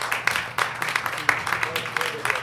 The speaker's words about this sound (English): All right, so you guys have been more than great. Just give a nice big round of applause to this incredible panel. This has been so cool.